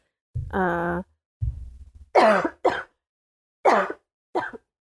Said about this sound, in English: It's not COVID. It's just a regular cough, guys.